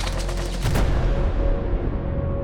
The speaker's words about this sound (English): so there were flames coming out of the bank, and there were people running out of it, out of those flames, with armloads of cash, just as much cash as they could grab, and some of it was charred at the edges. And amid all that, there was gunfire.